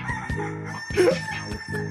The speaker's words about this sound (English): Big roosters. Big roosters. Drop some big roosters.